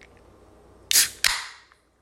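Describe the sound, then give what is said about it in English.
A can of Alvarado Street Brewery Mai Tai PA beer cracks open with two quick, sharp pops, each followed by a bright hiss of escaping carbonation that fades out over about half a second. No one speaks. “This is the Alvarado Street Brewery, Mai Tai PA. I mean, this one's, you know, it's looking good. I'm excited to get into it. Let's crack.”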